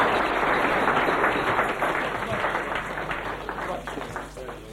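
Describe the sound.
An audience claps together, a dense, steady wash of many hands that stays fairly loud throughout and thins slightly toward the end, with a murmur of voices mixed in.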